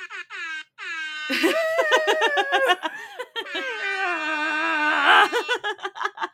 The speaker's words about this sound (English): Yes, that came from my phone. I have an app specifically for an air horn. On my phone. That's all it does. I use it at work all the time.